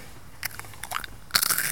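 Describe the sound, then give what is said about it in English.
Crisp crunching of a crunchy snack: a few sharp bites followed by a louder burst of crackly chewing, with no talking. “Now, whilst I bought the crunchy things you're whinging about”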